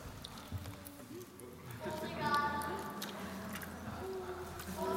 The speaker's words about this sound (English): Water gun. What could this be? Water pistol, that is right.